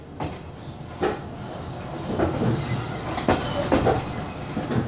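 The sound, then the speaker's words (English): A train heading towards the Ukrainian capital rolls steadily along the rails, its wheels producing an irregular clickety-clack of sharp knocks over a constant low rumble, heard from inside the carriage with no one talking. “This September, Zani and Arkady once again boarded a train and headed towards the Ukrainian capital.”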